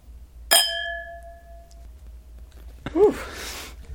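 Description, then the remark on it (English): A single bright clink of wine glasses touching in a toast among people drinking wine, its clear ringing tone lingering and fading over about a second, followed by a brief murmured voice. “Join us every week in our long-standing tradition of drinking wine, talking about nothing, anything, and everything. With all that said, here's the clink.”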